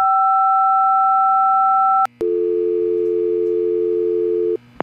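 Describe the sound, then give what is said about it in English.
A conference phone in a windowless office conference room, after a button on it is pushed, hums its dial tone loudly and steadily: a higher two-note tone for about two seconds, a sharp click, then a lower continuous tone that cuts off near the end. No one speaks. “Malone pushes a button on a conference phone.”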